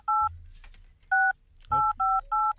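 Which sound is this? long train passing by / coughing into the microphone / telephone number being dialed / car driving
telephone number being dialed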